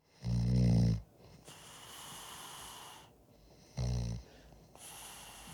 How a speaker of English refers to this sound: The band was a little annoyed with him sleeping there in the studio, so they stuck a microphone in his face and recorded him snoring.